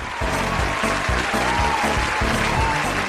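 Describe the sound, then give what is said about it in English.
An added crowd sound effect cheers and applauds steadily for about three seconds, a dense roar with a few higher whoops and whistles rising above it, and no speech. “I also got to say podcast, which I put lots of exciting to cheering me. And whoops and stuff yeah.”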